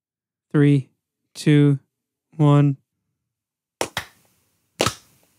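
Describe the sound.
Three sustained voiced tones, then a few sharp hand claps made to sync audio: two in quick succession followed by a single one about a second later, each crisp and snappy with a short ring.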